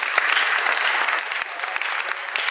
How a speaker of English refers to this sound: Great. Give a round of applause, folks.